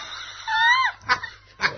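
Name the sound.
dog barking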